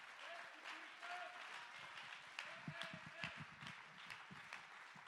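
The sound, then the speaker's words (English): An audience claps hands to give praise to God in a dense, steady burst of applause that holds for several seconds, with raised voices and cheers mixed in beneath the clapping. “Oh, let's clap our hands and give him praise.”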